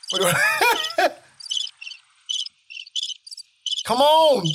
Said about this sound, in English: Crickets. Crickets again?